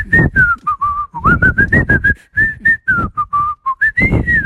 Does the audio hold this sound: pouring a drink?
no